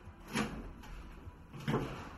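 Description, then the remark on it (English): An apartment door in Buenos Aires is opened and then shut, two distinct thumping, creaky movements about a second apart, moderately loud with no voices. “They took him back to our apartment to pack a bag and then dragged him out the door.”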